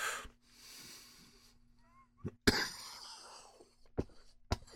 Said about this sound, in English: Okay, a little cough. Just a tiny little one. And I realize that I might be responsible for some of that coughing. I've not learned my lesson about inhaling and holding the smoke in my lungs.